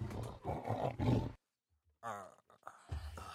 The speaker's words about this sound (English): I like that lion. What? That's really cool. That. Yeah, he growled at me.